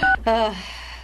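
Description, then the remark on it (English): Two quick telephone keypad tones beep in succession as someone dials a phone call, loud, the second trailing off into a faint decaying tail with no one speaking. “Let me get him on the phone really quickly.”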